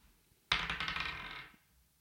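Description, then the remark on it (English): Dice clatter and tumble across a hard surface, a sudden loud rattle of quick, tightly bunched clicks lasting about a second before settling into silence. “And roll the dice, and that'll be how many months you have left to live.”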